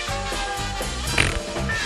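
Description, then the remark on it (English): Someone, asked to make their fart sound, imitates a fart with their mouth: a steady, buzzy, low raspberry lasting nearly two seconds, with a brief sharper sputter partway through. No words are spoken. “Please make your fart sound.”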